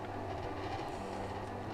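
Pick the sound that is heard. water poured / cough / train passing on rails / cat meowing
train passing on rails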